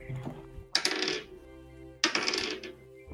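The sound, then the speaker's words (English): Dice clatter across a hard tabletop twice, each roll a bright, rattling tumble lasting about half a second before settling. The sound is fairly loud, with a soft hum underneath and no talking. “Where is it? Where's that dice?”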